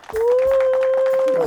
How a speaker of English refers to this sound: Wow. Crowd goes wild. Oh my goodness.